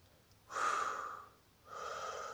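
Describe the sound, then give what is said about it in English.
A deep, airy breath drawn in sharply and held for nearly a second, then released in a softer, steady exhale, with no talking. “In and out. Natural, but big in.”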